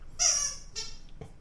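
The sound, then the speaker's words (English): A squeaky toy gives two sharp, high-pitched squeals, the first longer and louder, the second shorter, followed by a soft low thump, as a dog chews it. “Can you give him something that doesn't squeak?”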